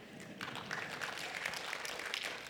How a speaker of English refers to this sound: You can clap for that. That's good.